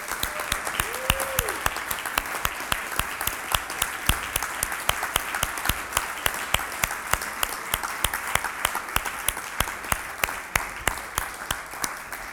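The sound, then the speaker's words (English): An audience applauds military veterans standing during a morning service, steadily for about twelve seconds. Many hands clap in a dense, even wash with sharper individual claps standing out throughout, with no talking over it. “And we just want to give you a special recognition, just an applause this morning.”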